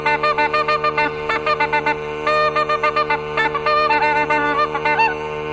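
An old gander honks loudly in a rapid, nearly continuous run of harsh, nasal calls broken by short pauses, with no voices present.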